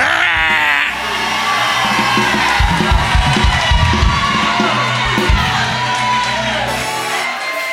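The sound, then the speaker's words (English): An audience roars together like lions when asked to roar for their bishop, a loud, sustained mass of growling and shouting voices with overlapping whoops rising and falling for several seconds. “But I need all lions to roar.”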